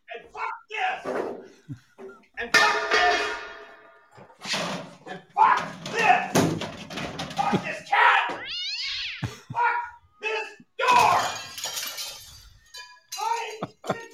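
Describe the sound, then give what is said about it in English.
A dog barks repeatedly amid a chaotic jumble of yowling, meowing animal cries, loud, with bursts overlapping one another throughout. “Shut that dog up.”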